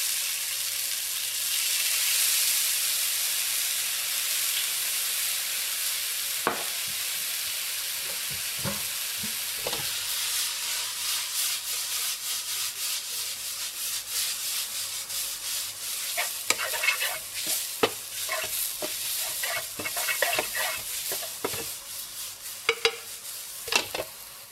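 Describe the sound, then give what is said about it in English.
Steady, bright sizzling of mushrooms being sautéed in a pan, with intermittent scraping and clinking as they are stirred, fairly loud throughout, no talking. “Now, once you're done sauteing your mushrooms, your pasta should be done boiling, or it might happen halfway through.”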